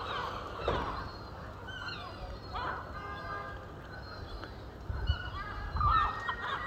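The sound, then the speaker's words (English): Seagulls call repeatedly over the harbour in Mevagissey on a fine morning, their harsh, honking cries overlapping above a low, steady background rumble. “Of course, the seagulls have been awake longer than everybody else.”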